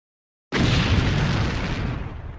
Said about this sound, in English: So that same day, there's another explosion.